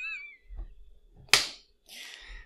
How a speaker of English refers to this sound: High five. High five. Yeah, thank you for narrating what we just... They'd hear that slap and that note of approval in our voice, and they wouldn't know what it was otherwise.